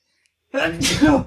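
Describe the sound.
A single loud sneeze: a short voiced intake followed by a sharp, hissy burst that trails off into a brief throaty sound.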